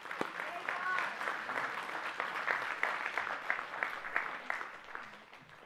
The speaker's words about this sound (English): Can we just applaud God and say thank you?